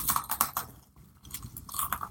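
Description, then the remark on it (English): Crisp crunching of a ginger snap cookie being bitten and chewed, several sharp crackly bites in quick succession, a brief lull, then more crunching. “I'm going to crunch on a cookie right now real quick.”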